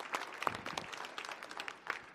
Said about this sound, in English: All right. Let's give all of our new members a round of applause.